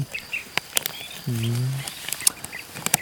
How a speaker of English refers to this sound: Sorry for the crunching, if you can hear it. I'm eating a potato chip.